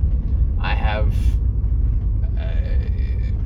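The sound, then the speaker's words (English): An abnormal load truck rumbles by on a tiny road, its deep engine drone steady and loud throughout, with short higher-pitched tonal bursts and a muffled voice briefly heard over it. “That was an abnormal truck, and I don't know why anyone else wasn't panicking.”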